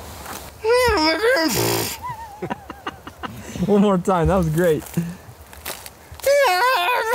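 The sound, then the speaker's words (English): A person imitates a Bigfoot holler like a braying donkey: three loud, wavering, see-sawing vocal bursts, with brief speech in between. “Give us your best Bigfoot holler. Well, gotta sound like a braying donkey.”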